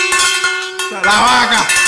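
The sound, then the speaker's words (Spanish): A cowbell is struck a few times, giving loud metallic clanks with a steady ringing tone that shifts in pitch toward the end. No one speaks. “La campana, espera, ¿dónde está?”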